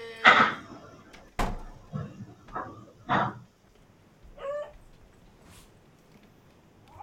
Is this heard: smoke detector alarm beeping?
no